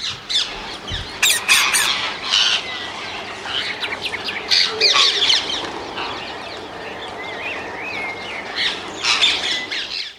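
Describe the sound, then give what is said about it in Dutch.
Harsh, repeated squawks of rose-ringed parakeets ring out, mixed with chirps and calls from other birds in a busy, continuous outdoor chorus. “wilden we een stukje afspelen van een opname van geluiden van de halsbandparkiet.”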